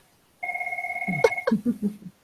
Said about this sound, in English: Put that landline on vibrate. And we'll be muting that.